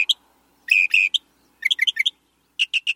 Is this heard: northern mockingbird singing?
yes